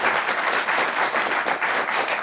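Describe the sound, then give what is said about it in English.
A short burst of applause, dense overlapping clapping from a group at steady loudness, with no voices over it. “Oh, a little applause there.”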